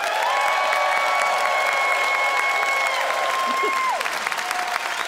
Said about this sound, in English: It is up to you to vote by applause. Who loved Simon's lament that his favorite sort of country music puts the sad in saddle? Simon King.